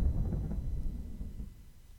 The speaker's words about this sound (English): what was that? I don't know. An explosion of some kind? Is there any chance that it wasn't? Don't think so.